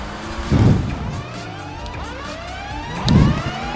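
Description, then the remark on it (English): A trophy truck engine revs and climbs in pitch with two heavy low thumps and skidding tires, loud, with no voices present. “Push the trophy truck out, Get the trophy truck, Get him, get the trophy truck.”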